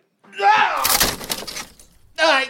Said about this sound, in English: Horribly sorry, I can send you another chair from Virginia. It's all right, Tyler. Chairs can be mended.